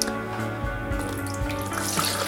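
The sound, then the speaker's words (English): Water pours steadily from a tap into a container, a litre of water being run to bring it up to temperature; a continuous rushing splash with a gently rising pitch as the vessel fills. No one speaks. “I'm just going to get my water up to temperature. So I'm using a litre of this stuff.”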